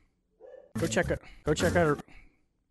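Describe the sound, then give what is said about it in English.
Two loud dog barks in quick succession, each a harsh burst about half a second long, with a brief softer yelp-like sound just before them; the barking comes from the owner's pet dogs. “My dogs love the regular podcast.”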